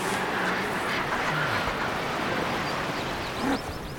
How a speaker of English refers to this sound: Oh, puffins down below. A load of puffins down at bustling sea city, seabird city.